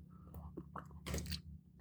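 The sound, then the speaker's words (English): Wet ASMR-style chewing with smacking and slurping bursts, a few crunchy bites in quick irregular succession, fairly loud with no talking. “The slurping sounds are kind of weird.”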